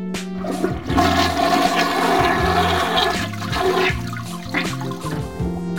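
A toilet flushes loudly, a sustained rush of swirling water with low gurgling churn running for several seconds, with no voices over it.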